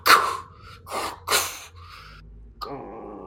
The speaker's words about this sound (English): as the doors begin to open.